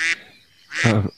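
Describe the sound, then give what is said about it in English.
Two loud duck quacks, a short bright one followed after a pause by a longer, harsher nasal call. “Will you get these fucking ducks away from me?”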